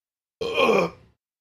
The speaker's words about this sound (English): Oh, big burp.